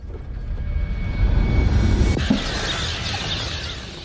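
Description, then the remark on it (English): Aircraft engines roar steadily overhead, a deep rumbling drone that shifts about halfway through into a brighter, hissing jet-like wash. No one speaks. “Only shit, when you see planes flying and then a comet coming too, that is not a good mix.”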